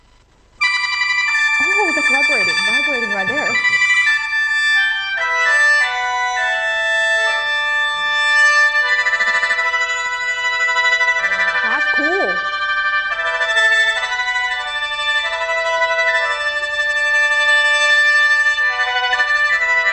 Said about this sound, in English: There are plenty of techniques for the sheng, like the single note you mentioned. It can play chords, glides, and trills. It can also imitate the sounds of birds, like phoenixes flying in the sky. Oh, that's vibrating right there.